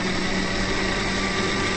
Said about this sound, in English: We're going to blitz this in the blender here